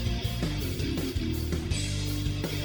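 An electronic home alarm system chime sounds from the front door as someone goes out through it: a run of steady, bright tones that shift pitch every half second or so and stay loud for almost three seconds with no talking.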